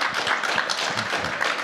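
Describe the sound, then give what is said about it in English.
An audience at a live panel session claps steadily, a dense, even wash of many hands with no pause, bright and crackly, no voices on top. “No one claps when we record in our offices, so this is pretty odd.”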